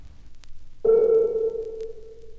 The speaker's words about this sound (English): These two ways of prolonging a sound have roughly the same effect. They sound almost alike. We hear first a short sine tone which reverberates artificially in this way.